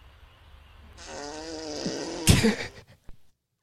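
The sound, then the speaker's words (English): A deer farting: a drawn-out, buzzy, raspy blast over a second long that ends in a louder sputtering burst, followed by a brief faint pop. No one speaks. “Just a deer farting.”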